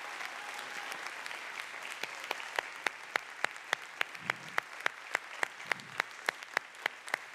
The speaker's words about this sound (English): Let's give him a great big round of applause this morning.